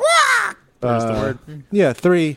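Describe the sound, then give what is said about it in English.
A person lets out a series of loud, harsh squawking cries, vocally imitating a pterodactyl, with strained, screechy bursts separated by short pauses. “turning into a pterodactyl. Be careful. Squawk!”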